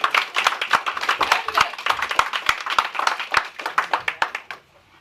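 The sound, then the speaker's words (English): An audience claps for about four and a half seconds to welcome the founder of an app called Community coming up to speak, a dense stream of overlapping sharp hand claps at a steady level that fades out abruptly near the end. “So right now, come on up, introduce yourself, everybody, clap it up.”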